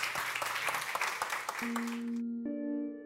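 A crowd claps in a dense burst of audience applause for a guest speaker at The Interval, the Long Now Foundation's venue in San Francisco, lasting about two seconds, then cuts off as sustained musical tones take over.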